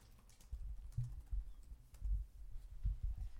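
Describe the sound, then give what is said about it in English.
Soft, irregular tapping of keys on a computer keyboard as someone types in a sentence, a steady patter of clicks with small bursts and pauses, fairly quiet, with no voices. “So I'm typing this in. Yep. Excuse my typing.”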